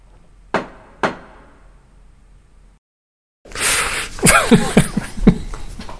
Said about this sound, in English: Let's bang the gavel. Meeting adjourned.